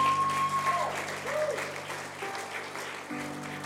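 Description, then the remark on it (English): Steady audience applause, a dense patter of many hands clapping throughout, with sustained low keyboard chords held underneath and a brief high tone near the start. “Either none of us clap or we all clap.”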